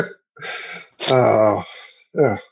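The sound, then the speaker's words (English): Several harsh, breathy bursts of coughing, fairly loud, with a longer strained, voiced stretch in the middle and a short final hack after a brief pause. “You're making me cough from your computer.”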